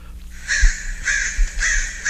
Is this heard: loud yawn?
no